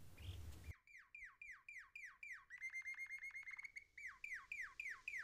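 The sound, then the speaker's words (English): Birds flutter to and fro in a clear blue sky; one sings in clear, repeated phrases: a steady run of downward-slurring whistled chirps, a quick rapid trill in the middle, then more slurred chirps, with no talking. “The birds fluttered to and fro in the crystal clear blue sky as they sang their songs to those below.”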